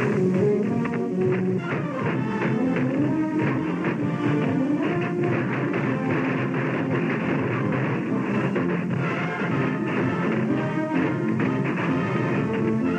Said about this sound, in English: But it was in that city's Chinatown where Victory Day was the most joyous. Firecrackers that had been hoarded for years are set off in a triumphant roar.